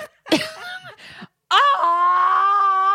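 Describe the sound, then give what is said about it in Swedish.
A person imitates a primal scream: a short strained yelp, a brief pause, then a loud, sustained, raw yell held for over a second. “Och du är så här primalskrik också.”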